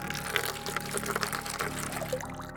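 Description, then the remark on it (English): Coal oil pours out in a steady, continuous stream, splashing and gurgling for a couple of seconds with no voices. “Let's see if a little coal oil will flush him out.”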